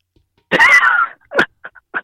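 A loud sneeze erupts with a drawn-out voiced burst, followed by a sharp second burst and a couple of short sniffs, with no talking around it.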